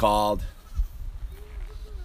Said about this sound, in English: Oh, the goats are making a cameo. Here they come. What's up, goats? There's the goats.